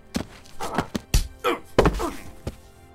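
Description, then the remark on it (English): A quick flurry of heavy punches lands, half a dozen dull thwacks and thuds in an irregular rhythm, the hardest blows falling near the middle as Spacehawk knocks out the best fighter in Queen Haba's kingdom. “You knocked out the best fighter in my kingdom! What strength you must have!”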